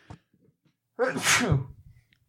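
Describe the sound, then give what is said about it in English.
A single loud sneeze bursts out after a brief quiet moment, with a sharp intake leading into a forceful, breathy explosion that trails off quickly. “Bless you.”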